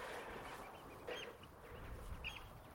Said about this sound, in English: I think they are oyster catchers. So noisy, so chatty.